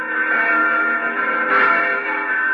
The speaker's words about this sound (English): There are the church bells. They have a special joyousness tonight, as all church bells seem to have on Christmas Eve.